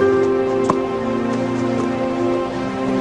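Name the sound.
rain falling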